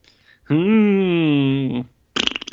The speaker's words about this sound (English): Yeah. Hey, we haven't had a lot of fart noises this episode. Congrats.